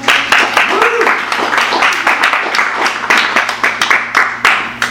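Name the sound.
audience applause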